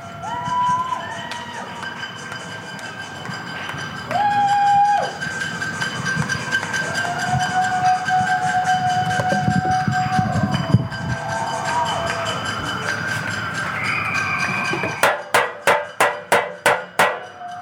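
A crowd in New York cheers and whoops from their windows at 7 o'clock for the first responders and the medical community, with sustained whistles and horn-like tones, then a run of about seven sharp, evenly spaced metallic clangs rings out as pots and pans are banged together.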